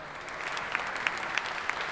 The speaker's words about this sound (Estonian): See on esimene aplaus sellel kohtuasjal.